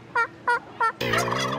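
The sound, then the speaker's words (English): A person imitates a turkey's mating call at the National Wild Turkey Calling Contest during the Turkey Trot festival: three short, evenly spaced yelps, then a longer, louder warbling gobble, all clear with no talking. “I just have to call the mating yell.”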